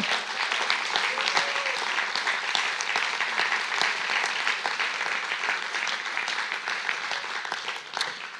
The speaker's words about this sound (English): Let's give one more round of applause for Jesus.